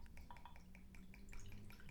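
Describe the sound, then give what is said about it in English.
Highland single malt Scotch whiskey pours into a glass in a hefty pour, a quick series of soft glugs and trickles, fairly quiet, over a low steady background hum with no talking. “Oh, that's a hefty pour.”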